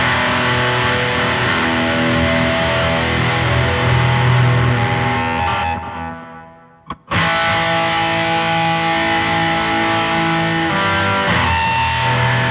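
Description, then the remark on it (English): Loud, heavily distorted electric guitar chords ring out with a thick buzzing tone, cut off abruptly around the middle by a brief gap and click, then the sustained chord resumes at full volume. “Play a chord.”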